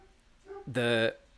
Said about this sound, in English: Anyone who can hear my dog barking in the background, I don't apologize because I love him very much and he can bark all he wants.